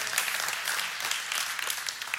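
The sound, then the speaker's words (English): An audience at a sermon claps steadily, a dense wash of many hands at even loudness for a couple of seconds with no voices rising above it. “It's funny to me how we kind of clap for that and then we go do it.”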